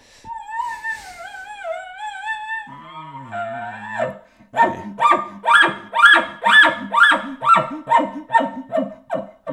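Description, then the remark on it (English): A human-blown elk bugle call on a fifth attempt: a high, wavering whistle drops into a lower groaning tone, then a rapid run of about a dozen loud, evenly spaced grunting chuckles. “Those last couple chuckles sounded good.”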